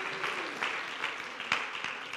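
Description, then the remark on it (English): An audience at a Sunday afternoon worship service claps their hands to the Lord, a dense, steady wash of applause with sharper individual claps popping out now and then, at moderate loudness. “Clap your hands to the Lord.”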